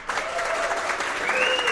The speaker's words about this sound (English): Round of applause.